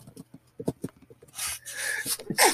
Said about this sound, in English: And that sneeze was not intended to be a part of this podcast, but it happened.